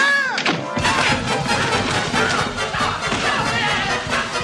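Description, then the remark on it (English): Boys roughhousing and wrestling: a steady, loud tumble of thuds, bumps and crashing knocks, packed closely together for the whole stretch, with no clear words spoken. “You know how long it's been since I've heard the boys rough house.”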